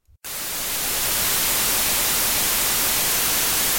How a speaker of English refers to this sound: So, yeah, we'll chuck in. Here's our little bit of white noise.